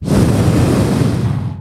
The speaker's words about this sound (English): And just by faith today, we just breathe. We release the breath.